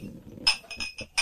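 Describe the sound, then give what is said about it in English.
Several glasses of Screwball peanut butter whiskey clink together in a toast, a quick series of bright, ringing taps, about four touches in just over a second with no talking. “And whatever it is, I've not had this before, man, but this is a nice drink. It's great, man. Cheers. Cheers. Yeah, cheers.”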